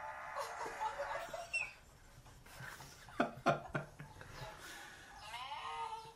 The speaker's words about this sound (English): That's a goat. That's a goat? It's a goat.